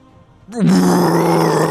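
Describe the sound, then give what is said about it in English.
A loud, sustained roar of a badly wounded female dragon, voiced by a person, bursts in after a brief quiet moment and holds a deep, rasping growl steadily for over a second, intense. “She lets out a massive roar.”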